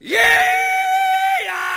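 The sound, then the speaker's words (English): A loud rebel yell from one voice: a quick upward whoop that holds as a long, steady, high-pitched cry for over a second, then drops off, with no other voices around. “I'm just doing the rebel yell here to kind of kick things off.”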